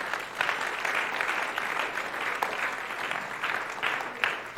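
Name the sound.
audience clapping hands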